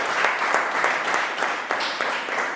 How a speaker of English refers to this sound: Amen and amen. Let's clap our hands for the Lord Jesus Christ.